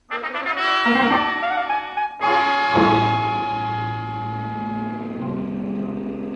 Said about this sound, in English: The way we took off in Corey's Nash, I wasn't sure whether her license was for driving a car or an airplane.